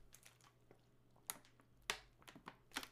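Quiet sipping and swallowing of water: a series of small wet mouth clicks and gulps at an uneven pace, with no one speaking.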